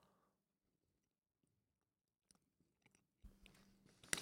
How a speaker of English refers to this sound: Sorry for the chewing, everyone.